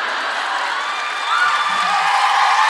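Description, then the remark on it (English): A loud live crowd cheers and whoops continuously, a dense wash of overlapping shouts and high-pitched yells that swells slightly louder midway through. “You're right to cheer for her tits.”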